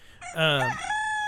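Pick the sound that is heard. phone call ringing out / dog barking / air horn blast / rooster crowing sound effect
rooster crowing sound effect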